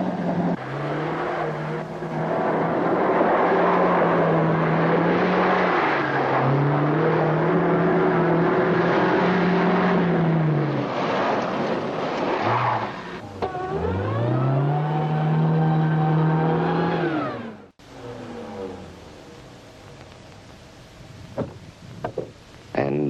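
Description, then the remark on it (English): A loud Volvo compact car engine roars and accelerates hard, its pitch climbing and dropping through gear changes before sweeping up again, then cutting off abruptly into quieter background noise. “Volvo gets over 25 miles in a gallon of gas, just like the little economy cars, and runs away from other popular priced compacts in every speed range.”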